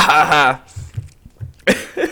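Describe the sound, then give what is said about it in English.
A harsh, noisy cough bursts out after a stretch of voiced sound and a few soft low thumps, followed by a shorter, weaker cough. “I'm just coughing for some reason.”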